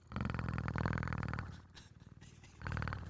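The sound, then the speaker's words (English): A man imitates a cat's purr with a low, rumbling, vibrating voice in loud bursts, pausing briefly midway before the throaty rolling resumes. “He was like, oh, wow, he does a much better purring, so yes.”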